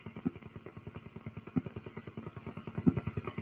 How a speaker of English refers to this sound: Helicopter sounds.